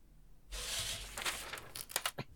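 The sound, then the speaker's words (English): Brisk, rustling paper sounds, a burst of crinkly flipping followed by several quick, sharp page turns, with no voices. “The furious sound of paper flipping.”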